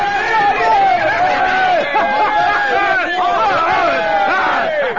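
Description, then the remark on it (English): A large crowd at a gladiator pit fight cheers and roars continuously for the winning pit fighter, many voices overlapping in loud, sustained shouting and yelling with rising and falling calls throughout. “And now, the bloodthirsty crowd was cheering for me, the pit fighter, the gladiator, killer of men.”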